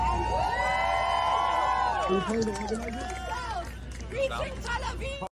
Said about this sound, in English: So they're cheering the rockets being fired as civilians.